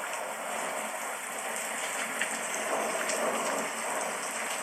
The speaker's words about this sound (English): It's getting so strong that the rain is coming down even stronger.